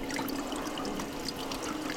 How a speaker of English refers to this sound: So there's this big press that is pushing on top of the pile of fermented grapes, and it's just pushing out the liquid. A small stream of dark red liquid drips from between the wooden slats and into a holding vat.